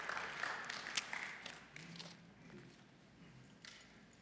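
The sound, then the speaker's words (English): A church crowd applauds a speaker after a kids' moment, with steady, dense clapping, a crackly wash of many hands that stays fairly even before thinning slightly toward the end, with no voices heard. “We can give her another round of applause, because it's hard to get up here, especially for kids' moments.”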